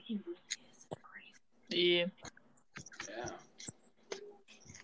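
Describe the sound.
Hushed, breathy whispering murmurs in the background in uneven bursts, with a louder, more voiced burst partway through before it trails back to soft, hissy sibilants.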